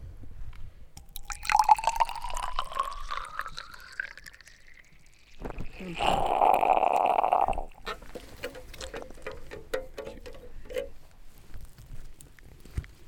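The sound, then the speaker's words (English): Water samples drawn from soil are poured into a container, the pitch rising as it fills, then a brief gushing rush followed by scattered drips, squirts and small plastic clicks as the water is drawn out with a syringe and filtered, with the filters being replaced. “and we're pulling it out with a syringe and then filtering it.”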